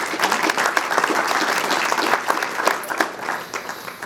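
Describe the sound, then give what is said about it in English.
A crowd claps steadily for several seconds for people who have just been prayed for, a dense wash of many hands with no clear rhythm, staying fairly loud throughout before easing slightly toward the end. “Give them a round of applause for you.”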